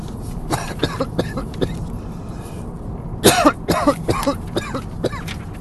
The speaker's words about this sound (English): One second. Sorry, coughing.